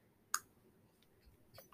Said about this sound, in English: Sorry about the paper noises. It's fine.